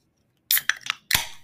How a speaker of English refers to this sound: Let's go ahead. Whether we're in Iowa, whether we're down in T-Hoss, let's go ahead, practice some tradition, crack some cold ones. Let's crack them.